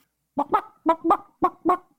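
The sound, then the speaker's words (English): A chicken clucks in three quick double bursts, evenly spaced over about two seconds, clear with no talking around it. “And if you're a chicken listening to this podcast, I have a very special message for you.”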